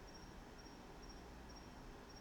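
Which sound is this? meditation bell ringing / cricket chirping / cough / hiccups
cricket chirping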